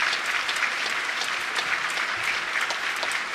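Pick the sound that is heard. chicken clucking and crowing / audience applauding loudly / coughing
audience applauding loudly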